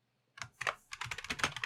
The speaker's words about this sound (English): I'm just typing in the middle of the stream.